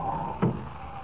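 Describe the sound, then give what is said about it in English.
A door opens with one short, muffled wooden clunk midway through, set against a steady low background hiss with no voices. “Open that door, ….”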